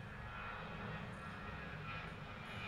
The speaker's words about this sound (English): There's a plane flying over.